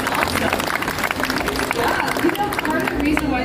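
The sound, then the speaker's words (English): An audience claps steadily for a few seconds, a dense crackle of many hands at even loudness, with a low hum and scattered crowd murmur underneath. “Big round of applause for our trees.”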